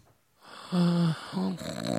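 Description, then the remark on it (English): A person imitates snoring with two rough, drawn-out nasal snorts, the first longer and louder, the second shorter, with a faint hiss behind. “An impression of somebody snoring.”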